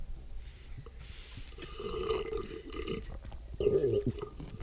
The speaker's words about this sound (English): Let's give it a big, gross, annoying slurp. Here we go.